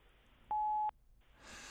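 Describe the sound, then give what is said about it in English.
A single steady beep from an automatic voicemail system sounds for under half a second, clear and loud against a quiet line, followed by soft breathy rustling as someone gets ready to speak. “Yeah, we should leave a message. We both will. To an automatic voice message system.”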